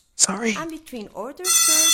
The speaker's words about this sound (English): So for example, this one's designed to make it sound like I'm in a classroom. No idea what this class is about.